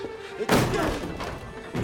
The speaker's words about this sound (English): Open the door! Kick the door.